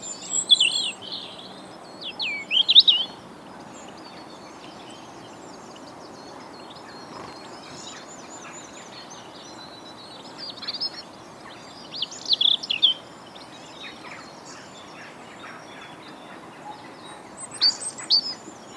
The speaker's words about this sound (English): And what we thought we'd do is make a little podcast where we try and explain how you might recognise some of the birds that are singing at the moment from their song rather than seeing them.